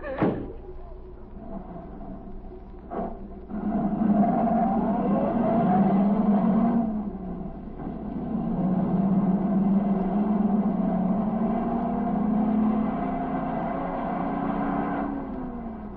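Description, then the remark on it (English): A couple of sharp thuds like car doors closing, then an engine starts up and drones steadily, its pitch rising and falling as the car pulls away and keeps driving. “Get in the car.”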